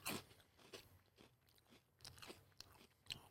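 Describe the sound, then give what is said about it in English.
Crunching on a crispy spicy corn snack, a flame-flavored Cheeto fry distributed from Chicago, with a series of sharp, crackly bites and chews repeating every half second or so, no talking. “Good crunch to it.”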